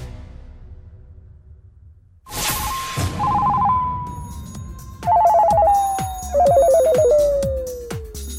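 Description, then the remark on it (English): After a quiet start, a loud phone rings out in three warbling trill bursts over a steady tone that slowly sinks in pitch, with rhythmic thumps underneath and no talking. “The phone is ringing.”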